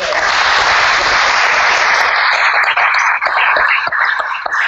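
A round of applause, a dense steady wash of many hands clapping at full loudness for a few seconds, with individual claps starting to stand out as it thins slightly toward the end.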